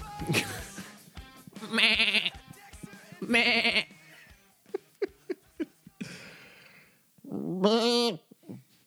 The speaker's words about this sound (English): Have you seen those goat videos where the goats are screaming? Oh, no. I've seen the Doritos commercial. There's goat videos on YouTube where the goats are screaming.